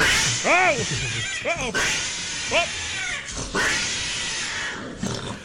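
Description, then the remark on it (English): Several wavering, rising-and-falling cat-like yowls over a noisy background, fairly loud, followed near the end by a rougher, harsher snarl or growl. “Did you hear that like snarl at the end there? That is a scare. Like the cat like noises are scary, but listen to like the snarl or the growl, whatever, at the end of this here.”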